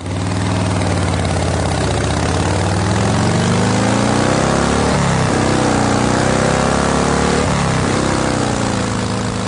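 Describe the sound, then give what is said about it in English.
A Harley-Davidson motorcycle with a 45-degree V-twin engine idles steadily and loud, its low rumbling harmonics wavering slightly in pitch as it runs for several seconds with no talking. “Okay, so hopefully that was either dead air or a motorcycle sound.”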